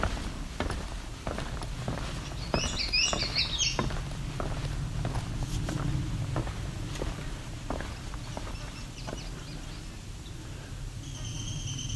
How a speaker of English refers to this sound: It's a downy woodpecker.